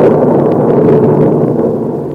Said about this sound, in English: I got to White Oaks in an electric storm, where the skies giving me a 21-gun salute.